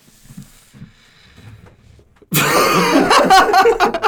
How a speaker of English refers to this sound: I'm sorry. I had cough.